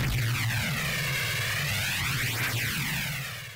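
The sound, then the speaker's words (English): A track from a record label's noise music project: a dense, roaring wall of harsh noise that swirls and sweeps like a jet engine passing overhead, loud and steady throughout with a heavy low rumble, fading slightly at the end. “one of those projects, something like what I'm about to play, is probably how Dirge's engine sound”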